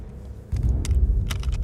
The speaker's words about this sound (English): Oh, come on! Key goes in the lock. Lock opens the door and I go to bed.